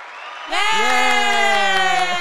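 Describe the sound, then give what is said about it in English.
A canned clapping-and-cheering sound effect bursts in after a half-second lead-in, with a loud, sustained group "yay" riding over rapid hand claps that continue to the end. “Yellow is clapping.”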